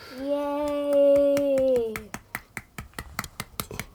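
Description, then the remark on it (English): A child holds a long, loud sung note over soft taps, then claps with fists in a quick, uneven burst of a dozen or so sharp, dull hits. “Are you clapping with your fists?”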